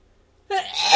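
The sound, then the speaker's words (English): A single loud sneeze bursts out after a moment of near silence, starting with a sharp voiced intake and ending in a harsh, hissing exhale. “And now I'm going to sneeze.”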